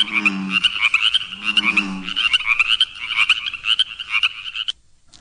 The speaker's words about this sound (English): Here comes bullfrogs and chorus frogs.